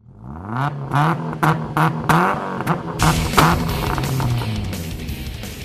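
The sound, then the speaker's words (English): Race car engines fire up and rev hard, pitch climbing and dropping in repeated surges, then several engines roar together in a loud, sustained blast. No voices. “Racers, start your engines.”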